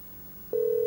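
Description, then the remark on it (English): A phone's ringing tone on a call to the speaker's 25-year-old daughter, a steady, clear electronic hum, switches on about halfway through and holds loudly to the end over faint background hiss. No one speaks. “I'm going to call Cheryl. See how this goes.”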